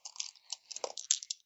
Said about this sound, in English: Okay, I'm gonna roll some dice.